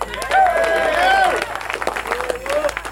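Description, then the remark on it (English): Scattered audience clapping at a comedy show as a comedian from Philadelphia is introduced to the stage, a loose patter of hand claps running steadily under a man's voice that talks over it throughout. “When I said he was from Philly, y'all was supposed to start clapping right there.”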